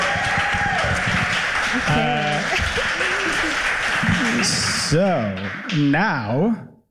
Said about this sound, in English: A round of applause for Catherine Cohen, everyone.